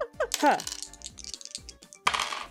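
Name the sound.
dice being rolled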